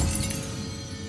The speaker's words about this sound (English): Startled by the chime of a clock, he drops his glass, which smashes on the hearth.